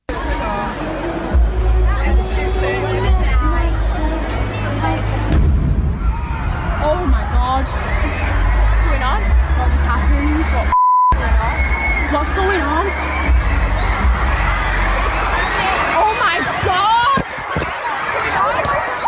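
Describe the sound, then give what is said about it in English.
A large concert crowd screams and shouts in panic as it stampedes moments after the concert ended, following an explosion adjacent to the theater; a dense, continuous roar of high-pitched cries and yelling, broken once by a brief electronic beep partway through. “And then the crowd started stampeding toward this young lady who was recording.”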